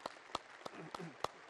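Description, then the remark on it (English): A handful of sharp, evenly spaced claps ring out in a steady rhythm as a church audience applauds, fairly quiet, with faint murmured talk between them. “And after the service is done, yeah, you can clap. You can clap.”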